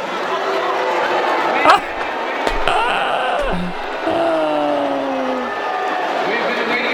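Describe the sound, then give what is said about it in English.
A large crowd boos steadily at a sports event as a man comes out to the crowd, a loud, sustained roar of low drawn-out voices, punctuated by a few sharp thuds partway through. “So here's what happened when he came out to the crowd.”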